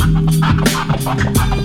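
DJ turntable scratching: quick, rhythmic back-and-forth swipes of a record, about six sharp sweeping bursts riding over a loud, steady bass-heavy beat, with no voices.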